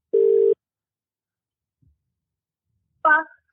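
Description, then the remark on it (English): A single steady ringback tone sounds on an outgoing phone call, lasting about half a second and fairly loud, followed by quiet and then a brief, voice-like burst near the end. “This is the part where the phone rings.”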